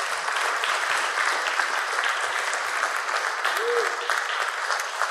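Sustained audience applause as a guest comes up on the stage, a dense, even wash of many hands clapping at steady loudness for about five seconds, with no pauses or build-up.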